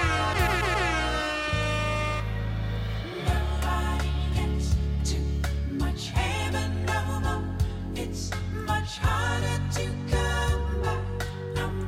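A sampled disco song plays steadily, with sustained harmonic chords over a deep, pulsing bass line and regular percussive hits, loud and even throughout with no voices on top.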